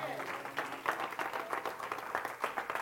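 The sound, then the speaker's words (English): A church audience gives God a victory hand clap in a dense, sustained burst of applause, steady and fairly loud throughout, with individual claps blurring into a continuous crackling roar and faint voices mixed underneath. “Come on, give God a victory hand clap.”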